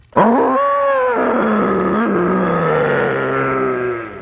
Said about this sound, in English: It was slimy, gooey, oozing algae. It had a big lumpy back and sharp teeth in its mouth as it growled.